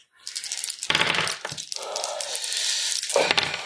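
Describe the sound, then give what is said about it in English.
Dice clatter and rattle across a hard surface for a few seconds, with sharp clicks and a steady rolling hiss, moderately loud, no voices; the dice are rolled for initiative. “So it's your initiative plus dice. Whatever you roll.”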